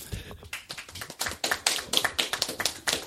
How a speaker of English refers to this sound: You guys okay over there? How about just a little applause would make me feel better.